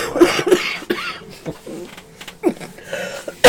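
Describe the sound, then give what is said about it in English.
A series of short, harsh coughs brought on by laughing, coming in irregular bursts with some throaty rasping between them, ending on a louder cough. “Shouldn't it makes me cough.”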